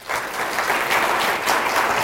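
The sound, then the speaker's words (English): Steady, dense applause from an audience, a continuous crackle of many hands clapping at an even level for about two seconds with no voices over it. “Let's give them a hand.”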